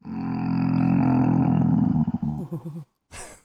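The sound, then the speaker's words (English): A person imitates a zombie with a long, loud, low guttural growl that breaks into wavering pulses, then ends with a short raspy breath after a brief pause. “Give us your best zombie sound.”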